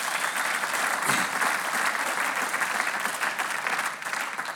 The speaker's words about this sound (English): And let's give Jesus another huge round of applause.